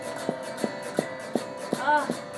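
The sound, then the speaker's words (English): A steady series of six dull foot stomps on a floor during a leg exercise, evenly spaced about a third of a second apart, with a faint background hum and no talking. “And stomp it out.”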